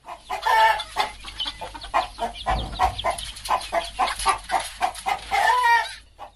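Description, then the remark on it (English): A dense flock of chickens clucks and squawks continuously at a riverside poultry farm where the birds are kept as feed for African rock pythons, with a rooster crowing loudly near the start and again near the end. The birds sound busy, with no talking. “By the river is a poultry farm where birds are kept to feed another protected species, the African rock python.”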